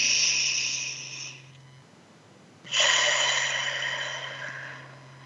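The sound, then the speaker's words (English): Two long, airy breaths blown out through pursed lips, as if through a straw, during a guided breathing exercise: a steady hiss for over a second, a short pause, then a stronger, longer exhale that slowly fades. A low hum runs underneath. “See how big you can make your belly out through your mouth. Like through a straw, wonderful. Keep breathing.”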